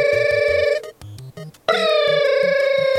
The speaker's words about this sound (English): He dials Liam's number.